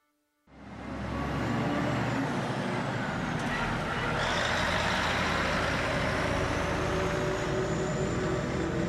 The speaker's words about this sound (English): October the 23rd, 2019. A lorry parks up in an industrial estate in Grays, Essex. The driver is a County Armagh man.